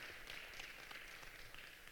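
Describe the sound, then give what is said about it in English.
An audience at Discover Church in the Highlands applauds the worship team, a dense, steady wash of many overlapping hand claps with a hissy, crackling texture that holds at an even, moderate level throughout, with no voices. “Hey, can you just give the worship team a round of applause?”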